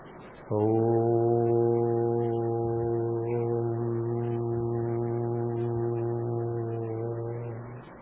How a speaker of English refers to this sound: The purpose of Om is to lead you over there. It is a ladder from the infernal regions to the blissful regions. With the help of the sound of Om, or with the unuttered sound of the exhalation. Move upward.